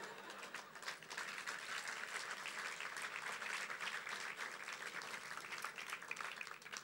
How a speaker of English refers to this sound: That's the fewest amount of applause I've ever had for this video.